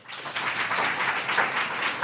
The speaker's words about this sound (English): when you edit that, if you could bring the when I stop talking and when they start clapping a little closer together.